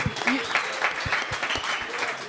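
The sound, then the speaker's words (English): A crowd cheers for a surfer, clapping steadily in a dense, continuous wash of applause, with sharp individual claps and scattered cheers and shouts rising through it at an even, loud level. “but like, yeah, it's really sick to be here and like see everyone like just cheering for me.”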